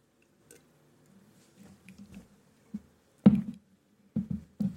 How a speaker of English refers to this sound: Sorry, I'm drinking water.